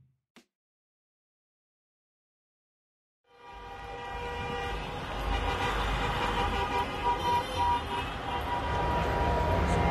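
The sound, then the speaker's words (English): After a few seconds of near silence, loud air horns of a convoy of thousands of trucks in the streets of downtown Ottawa, during a protest against vaccine mandates for truck drivers, blare together in a sustained, overlapping chorus, swelling slightly and continuing without a break to the end. “In downtown Ottawa, a convoy of thousands of trucks has clogged the streets for the last 3 weeks.”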